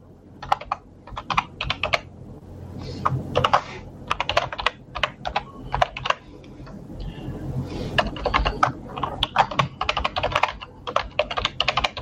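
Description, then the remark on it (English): Rapid, uneven clicking of someone typing on a computer keyboard, with bursts of keystrokes and brief pauses over a low background hum. “Multitasking. And I'm looking at the keyboard.”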